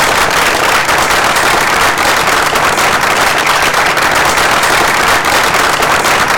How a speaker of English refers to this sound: And I think he deserves an enormous round of applause.